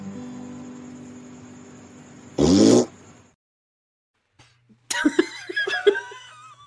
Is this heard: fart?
yes